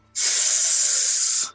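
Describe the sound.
A person imitates a snake's hiss with one steady, loud, airy hiss held for over a second, starting abruptly and fading out at the end.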